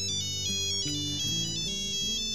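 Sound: cell phone ringtone ringing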